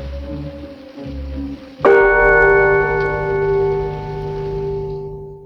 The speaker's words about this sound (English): I had to keep the sound of the whatever the gong because it played a big role in the episode.